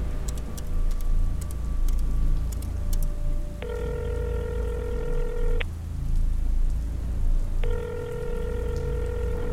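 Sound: phone keypad dialing tones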